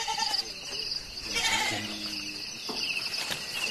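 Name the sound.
goats bleating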